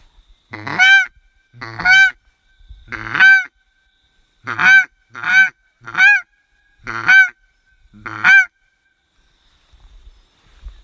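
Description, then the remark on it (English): A DJ paradise duck call, as used in New Zealand, is blown, giving eight loud, nasal honks in uneven bursts, some spaced apart and others quick together, with no talking. “In New Zealand number 22 paradise duck.”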